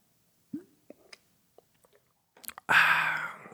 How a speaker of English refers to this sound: I want them to hear me drink some water, okay?